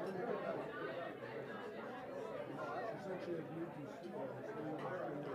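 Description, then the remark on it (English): A dense, steady murmur of crowd chatter, many overlapping voices blending into a continuous babble with no single speaker standing out, holding an even loudness throughout. “All right, there's an even bigger crowd than I thought.”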